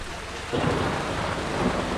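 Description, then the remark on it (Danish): Steady rain pours down in a dense, hissing wash, growing heavier after a moment, with a low rumble of thunder underneath. No one speaks. “Vi når bare aldrig frem, altså, hvis vi skal have alle ud af regnen.”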